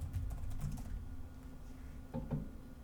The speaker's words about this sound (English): To all you hearing me clickety clack on my laptop, I'm the fastest typer. No, that computer's typing speed whack, boy.